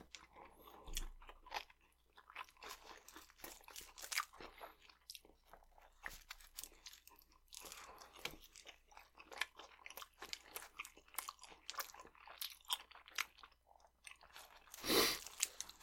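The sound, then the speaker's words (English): Crunchy chewing of a Jersey Mike's sub sandwich with a chip stuck inside, a steady stream of crisp bites and mouth noises, with one louder crunch near the end and no talking. “Stuck one in my sandwich. About to embark on that little endeavor right about now.”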